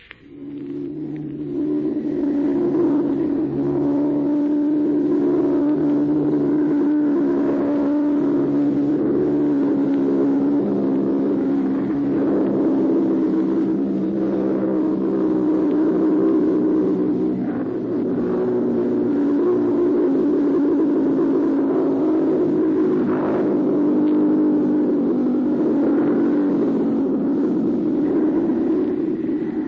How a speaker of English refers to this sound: From a point in southern England, immediately after this menace developed, Mutual listeners heard the actual sound of a robot bomb in flight. Listen. Notice how the engine cuts off just before it explodes.